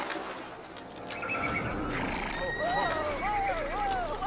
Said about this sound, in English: This episode begins as the last one ended, with a flock of birds scaring the horses as Ulysses' limp body is carried into the woodland and thrown into a ditch.